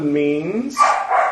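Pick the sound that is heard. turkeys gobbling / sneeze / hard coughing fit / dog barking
dog barking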